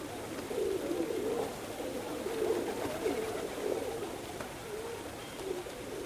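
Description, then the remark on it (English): Several pigeons in Trafalgar Square coo in soft, overlapping low murmurs that continue throughout, with a steady hum of outdoor ambience behind them and no speech. “Visual arts and amateur enthusiasts were at the centre of the enterprise, and even the Pigeons of Trafalgar Square became members of the band in Berio's film.”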